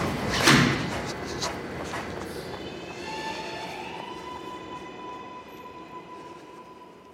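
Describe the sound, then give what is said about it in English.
A train rolls in with a sharp clunk at the start, then steady rumbling under high, drawn-out metallic squeals from braking wheels, gradually settling. No one speaks. “I got off the train and was running.”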